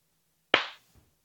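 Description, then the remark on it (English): A single sharp, loud hand clap with a brief ringing tail, followed by a faint soft thump, part of a slow 80s-style clap given in reaction to a move by Aaron Rodgers, with no voices. “Slow 80s clap.”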